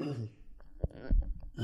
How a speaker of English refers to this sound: If I have something in my throat, I'm going to cough. I'm sorry.